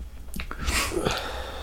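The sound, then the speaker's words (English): One sneeze: a few short catching breaths, then a sudden hissing burst that fades into a quick, breathy tail. Nobody speaks. “Sorry, in the middle of a sneeze.”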